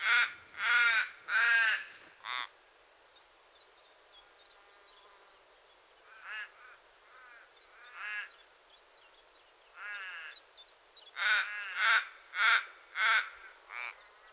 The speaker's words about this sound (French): Juché sur un promontoire à 2000 mètres d'altitude, je me suis amusé à capter ces corbeaux, jouant avec les courants d'air.